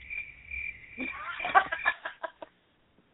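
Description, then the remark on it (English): A high, steady cricket trill sound effect followed by a run of quick chirping pulses that fade out, heard alone with no talking, fairly faint. “You all didn't even give me the cricket sound.”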